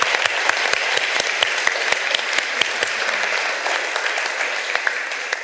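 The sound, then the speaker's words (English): A crowd claps steadily throughout, a dense, even wash of many hands with sharp individual claps popping out, sustained at a fairly loud level with no voices standing out. “So please give another round of applause, folks.”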